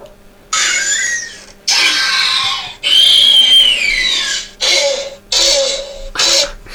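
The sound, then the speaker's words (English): Velociraptor screeches sound effect from the film Jurassic World: six loud, harsh, shrieking calls in quick succession with brief gaps, some sliding downward in pitch, the later ones shorter and choppier. No one speaks. “But is that, are they the Velociraptors in Jurassic World? Yes, well done.”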